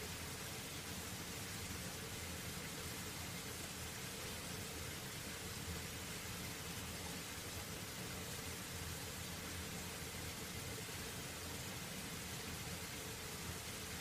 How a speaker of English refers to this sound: And as you hear the sound of the creek flowing by